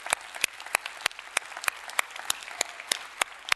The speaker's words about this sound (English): There were some veterans. And I saw them. Yeah, let's cheer for our veterans.